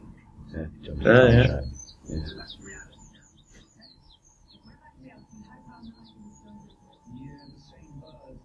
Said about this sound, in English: Yeah, they can hear birds, which is pretty good.